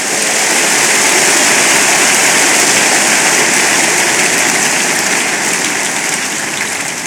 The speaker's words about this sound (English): Give the Lord a big hand of praise.